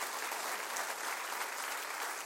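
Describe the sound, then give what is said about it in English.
An audience claps their hands in steady, dense applause, a continuous crackling wash of many hands with no voices standing out, holding an even level throughout. “Come on, clap your hands and rejoice.”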